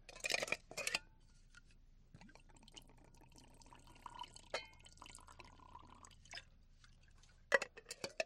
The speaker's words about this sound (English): Today we'll be having a cup of lavender tea. Here, let me pour you a cup.